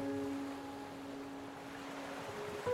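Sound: ocean waves crashing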